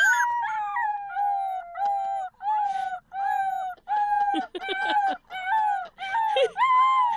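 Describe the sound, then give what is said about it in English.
A husky howls in a series of long, wavering cries in the back seat of a car while a young girl howls along, teaching the dog to howl, her voice imitating it so closely the two blend. Loud, with short pauses between. “So they're in the back seat of the car, and the little girl's driving her mom crazy, teaching the Husky how to howl.”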